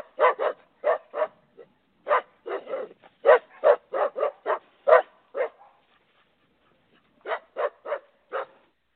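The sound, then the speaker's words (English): A dog, the RSG junkyard dog Cocaine, barks rapidly and repeatedly in short bursts, loud, pausing briefly before a final volley of sharp barks. “Yeah, that's our RSG junkyard dog, Cocaine.”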